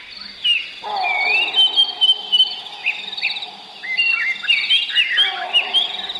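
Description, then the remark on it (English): A dense dawn chorus in Zimbabwe, Africa: many birds whistling and chirping over one another, with a steady hum of insects buzzing underneath throughout and an occasional monkey; no voices. “So this is a dawn chorus in Africa.”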